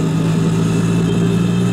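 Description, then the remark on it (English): The small two-stroke engine of a tuk-tuk, a small canopied three-wheeled rickshaw in India, idles steadily, a constant buzzing chug with a strong low hum and no breaks over the short stretch; no one speaks. “A tuk-tuk is so nicknamed because of the repetitive chuckle of its small two-stroke engine.”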